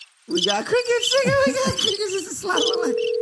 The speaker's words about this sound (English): We hear crickets. It's crickets like a motherfucker.